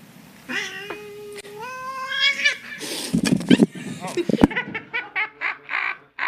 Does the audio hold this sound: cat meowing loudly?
yes